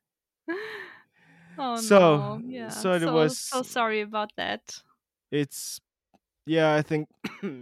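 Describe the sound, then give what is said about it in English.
Several harsh coughs burst out between strained, breathy vocal sounds, followed by a short spoken apology from the same voice. “I have to cough now again.”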